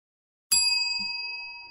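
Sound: bell ding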